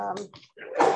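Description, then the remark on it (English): A brief voice fades out, then a single sharp, fairly loud sneeze bursts out near the end. “Bless you.”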